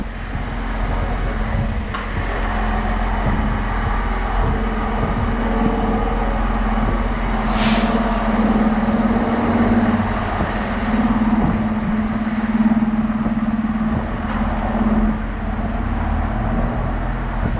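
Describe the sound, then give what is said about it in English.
Steady street traffic with a heavy truck engine rumbling and idling, punctuated by a single sharp hiss of air brakes midway through. No one speaks. “Try and gravitate towards walking to the places that are don't have too much traffic noise.”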